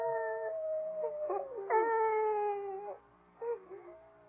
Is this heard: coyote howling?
yes